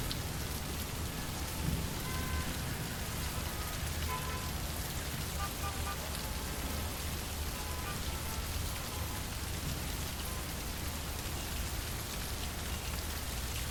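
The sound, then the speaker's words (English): Heavy rain pours steadily in a rainstorm, a dense, continuous, loud hiss of drops drumming on surfaces, with a faint low rumble underneath and no voices. “Have a great night, and thanks for joining me on my journey in the rainstorm.”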